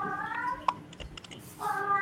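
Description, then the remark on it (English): A deaf cat standing in a hallway lets out two drawn-out, wailing meows, one at the start and one at the end, with a few sharp keyboard-like clicks in the quiet gap between them. “He's deaf and he stands in the hallway singing the song of his people.”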